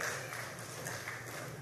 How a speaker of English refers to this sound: two or three of y'all clapping because the others, I know what the problem is. You too addicted to clap.